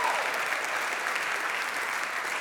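A church audience applauds its founding pastors steadily, a dense, even wash of many hands clapping at constant loudness with no voices standing out.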